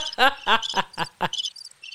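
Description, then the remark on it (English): A cricket sound effect played from a sound pad chirps in a quick, steady run of about five loud pulses, followed by fainter high trills, with no one talking over it. “we gonna figure out these dang sound pads. Not the crickets.”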